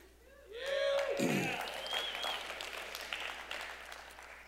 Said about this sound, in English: I didn't think that would warrant a clap, but thank you for that. Thank you all for that.